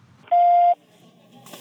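A single steady electronic beep in a recording booth, signalling the start of a message, loud and clear, lasting under half a second, followed by faint room noise and a brief breath or shuffle.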